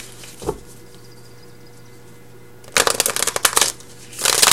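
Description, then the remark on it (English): A deck of cards being shuffled: a burst of rapid crisp riffling flutters, a brief pause, then a second dense shuffle starting near the end. No one speaks, and a low steady hum sits underneath. “Sorry if the shuffling's loud.”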